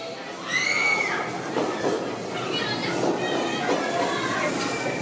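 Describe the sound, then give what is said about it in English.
A 3 subway train rumbles into a station, its wheels letting out a high metallic squeal as it brakes, with steady loud track noise and faint voices in the background. “Here comes the old 3 train.”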